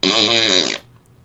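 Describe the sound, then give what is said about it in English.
One loud fart, a buzzy sputtering blast lasting under a second before it cuts off abruptly, leaving near-silence. No one is speaking. “If you're 2 or if you're 200, if you hear someone fart, it makes you smile a little bit.”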